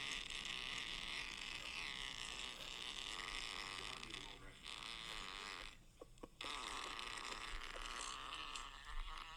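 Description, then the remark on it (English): A long, drawn-out fart rumbles on for several seconds, loud, with a brief break near the end before it resumes. “Dude, that's a long fart.”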